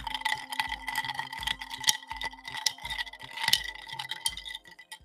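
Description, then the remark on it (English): Ice cubes clink and rattle against a glass as a spoon stirs iced cold brew coffee concentrate topped with Poland Spring water in a kitchen, producing a steady run of bright, tinkling knocks in an irregular rhythm at moderate volume, with no voices. “what the people really need is, because they don't get a hearty pour sound, they need to hear the ice clinking in the glass. So then I bring the spoon down for them.”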